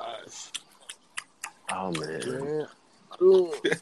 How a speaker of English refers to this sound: I'm drinking a cup of water.